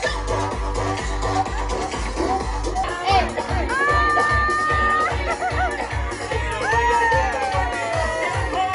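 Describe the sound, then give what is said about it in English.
A loud, dense crowd cheers and screams, with high shrieks and whoops rising above the roar. A steady pounding beat thumps underneath throughout. “And they went nuts. And I was screaming.”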